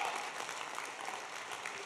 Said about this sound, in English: If you know you're here tonight because you're part of that army, clap your hands again and give God a mighty, mighty shout of praise.